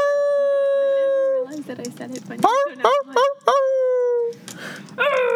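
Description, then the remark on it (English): People imitate a dog howling: a long, steady howl, then a quick series of short rising whoops, ending with another drawn-out howl. “I tried to start a howl, it didn't work. We both start just like howling as you're howling.”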